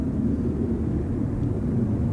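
A small propeller plane passes overhead above a boat at sea, a steady low engine hum that stays at an even loudness throughout, with no voices or other sounds.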